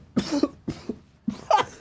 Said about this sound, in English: Now I don't have to cough anymore.